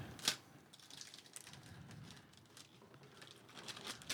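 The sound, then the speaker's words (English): Gift wrapping paper being torn open, starting with a sharp rip and followed by steady crinkling and rustling for several seconds, with no one talking. “I like this paper. That's all Nikki.”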